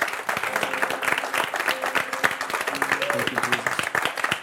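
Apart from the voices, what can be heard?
audience applauding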